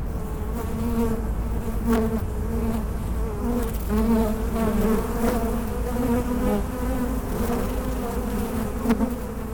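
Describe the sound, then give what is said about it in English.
A dense, steady drone of many honeybees buzzing inside a crawling hive on the roof of National Geographic headquarters, recorded with a recorder set down into the hive, with a continuous hum and shifting tones from countless wings and no voices. “I have a recorder here, and I'm going to set it down into a hive that is crawling with bees.”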